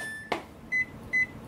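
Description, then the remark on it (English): A microwave oven beeps with a steady electronic tone, then gives two more short beeps evenly spaced, with a brief clunk in between and quiet room hum beneath. “What is that? It's the microwave.”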